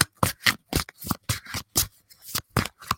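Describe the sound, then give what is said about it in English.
A deck of cards being shuffled, with about ten quick, crisp papery bursts in an uneven rhythm and short pauses between them. No one speaks. “Boy, they want me to shuffle this deck, don't they, for you?”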